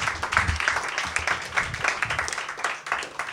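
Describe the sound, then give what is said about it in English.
An audience at a reading event applauds a reader steadily for a few seconds, a dense wash of many hands clapping at once, fairly loud and continuous without a break. “Give her another round of applause.”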